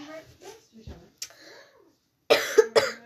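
Two sharp, loud coughs in quick succession, following a stretch of quiet, indistinct vocal sounds.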